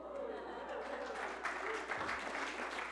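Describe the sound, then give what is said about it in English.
An audience claps steadily for about three seconds, a dense, even patter of many hands at moderate loudness, with a faint voice underneath the applause. “Don't clap because it may not be good.”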